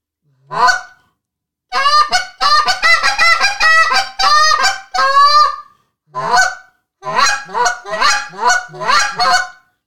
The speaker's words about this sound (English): 'Cause there is, where I work in Golden Valley, there are hundreds of geese there, and they're constantly fighting with each other. And this is exactly what it sounds, man. All day is what I hear.